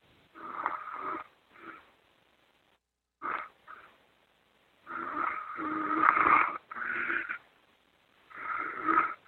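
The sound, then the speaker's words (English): A man who has fallen asleep during a phone call snores in a deep sleep over the phone line in six or so uneven, raspy bursts separated by short silences. The snores sound muffled and thin, some brief, others drawn out and louder. “Sounds like he's talking in his sleep.”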